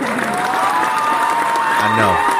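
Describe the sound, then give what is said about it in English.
A crowd applauds steadily, the dense clapping sustained throughout, with some voices briefly audible beneath it near the end. “They start clapping.”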